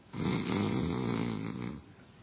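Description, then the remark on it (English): A man's voice imitates Jesus snoring in the front of a boat, one long rattling, throaty snore lasting about two seconds, forceful, then trailing off into quiet. “Jesus is snoring in the front of the boat.”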